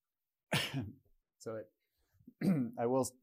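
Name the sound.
cough and throat clearing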